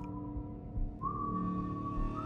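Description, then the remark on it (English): A man whistles a tune as he walks away into a forest, holding long, steady notes that shift in pitch, clear against a low, continuous rumbling drone in the background; no one speaks. “The quiet tread of his boot fades into the forest, and soon he disappears, whistling a tune I know all too well.”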